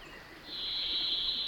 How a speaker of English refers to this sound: I follow the singer upslope for several minutes and soon arrive at the edge of a small marshy clearing with a rivulet dancing down its center. The varied thrush is somewhere above me in a tall aspen tree.